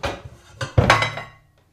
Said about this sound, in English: Right under the counter, right over there, there's going to be the cooking pans. Grab me a couple, would you?